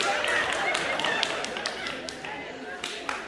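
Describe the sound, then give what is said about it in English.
An audience applauds, a dense, steady patter of many hands clapping for a few seconds, with crowd voices mixed into the clapping. “Can I applaud to that?”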